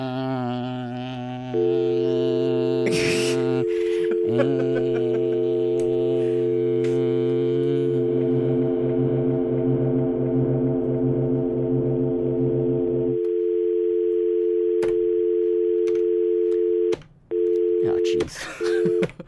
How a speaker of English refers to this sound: Oh, there you go. Sad. Dial tones.